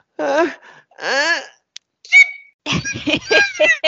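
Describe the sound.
A voice imitates a coworker's exaggerated fake sneeze: two drawn-out, rising wind-up breaths, a brief pause, then a sharp, loud burst, followed by choppy laughter.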